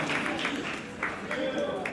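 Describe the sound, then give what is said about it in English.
An audience breaks into steady applause for the Lord, many hands clapping in a dense, continuous patter, with voices faintly mixed in underneath. “So we should give applause to the Lord.”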